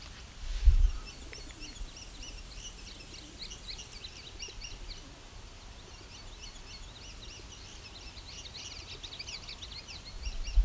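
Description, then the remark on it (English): Low, soft cooing from a group of 17 rock doves, mostly gray with some rusty red, in trees, rumbles beneath the steady, repeated high chirps of an indigo bunting, with faint outdoor background noise throughout and no talking. “These guys are cooing.”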